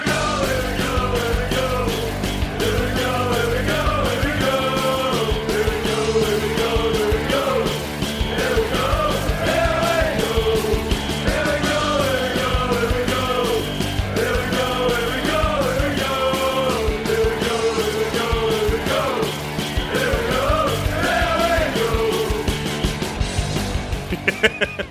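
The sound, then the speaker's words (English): A man yells loudly and almost nonstop for about twenty-five seconds, his strained voice rising and falling in long drawn-out cries over a dense, steady background din. “I can hear him yelling.”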